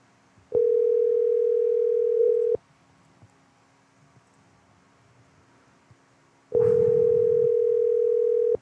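A telephone tone on an outgoing call: two steady, loud electronic beeps, each about two seconds long, separated by a roughly four-second pause of near silence, with no one speaking.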